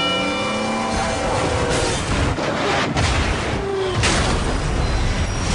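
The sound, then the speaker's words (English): A million-pound freight train, which takes a mile to stop, thunders through a crossing with a heavy collision, loud crunching metal impacts and booms over a continuous roaring rumble, loud and sustained throughout. “And on the tracks, we have Bull, a million-pound freight train that takes a mile to stop.”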